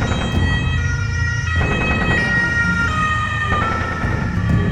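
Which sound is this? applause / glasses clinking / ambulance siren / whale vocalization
ambulance siren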